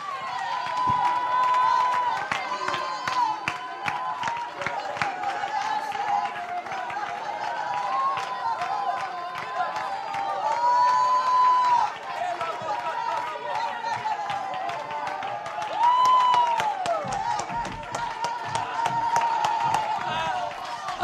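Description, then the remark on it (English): An audience at a church worship service claps fast and steadily, with stomping and raised, shouting voices, all loud, sustained without a break for the whole stretch, with no piano or drums. “Make a joyful noise with your mouth, with your hands, with your feet.”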